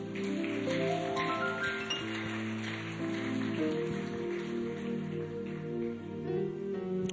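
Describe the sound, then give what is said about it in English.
An audience claps for the Lord during a sermon, a steady, dense, rain-like patter over sustained organ-style chords that hold and shift underneath. No one speaks. “That's a good place for you to clap for the Lord.”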